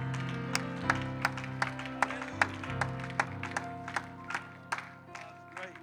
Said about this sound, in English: Would you give the Lord a hand clap and some praise before you're seated? Hallelujah.